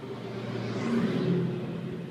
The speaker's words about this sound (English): And there goes a tractor. Yep, I'm recording in the countryside in the car again this week, so more for me.